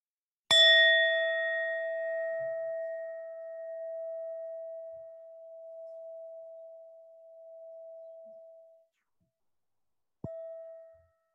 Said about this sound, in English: Just listening to the sound of the bell now.